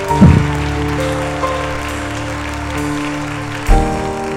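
A crowd claps steadily in applause for God, a dense rain-like patter of many hands, over sustained keyboard chords, with a couple of louder bursts as the music shifts.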